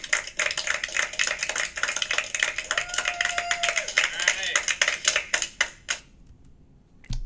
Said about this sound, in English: Clap it up.